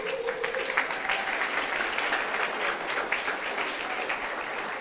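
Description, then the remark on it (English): An audience claps steadily for Jesus, a dense, even wash of many hands applauding at once with no voices on top, holding level for the whole stretch. “Clap for Jesus.”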